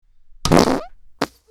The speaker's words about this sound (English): Ooh, what was that? Was that the buzzer? Is that the sound of the buzzer? Or did someone just let one go?